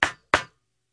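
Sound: group hand clap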